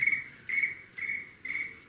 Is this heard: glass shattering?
no